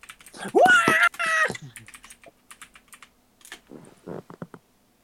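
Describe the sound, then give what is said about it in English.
Rapid, uneven clicking of computer keyboard keys, moderately loud, in irregular bursts, as someone searches for a picture to post in a chat. A short high-pitched tonal cry sounds near the start. “Don't mind the typing.”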